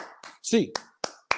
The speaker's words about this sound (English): Bruins fans, get your hands up. A clap time, baby. And 1, 2, 3, 4, 5, 6, 7, 8.